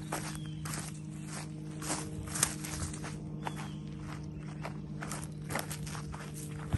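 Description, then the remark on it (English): Footsteps walking outdoors past planted fruit and coffee trees by a pond, a steady series of soft crunching steps at an easy pace, with a constant low hum running underneath and no talking. “Come on. Walk over here.”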